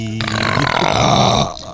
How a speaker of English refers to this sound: But he can burp.